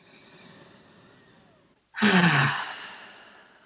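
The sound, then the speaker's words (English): A long, drawn-in breath, then a brief pause and a loud yawn with a falling voiced groan that trails off into a breathy release, a person yawning during a guided deep-breathing relaxation exercise. “Oh, I'm yawning.”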